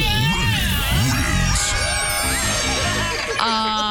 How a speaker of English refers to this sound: Ice skating rink. And I just had a fun time watching you flip and flop around it.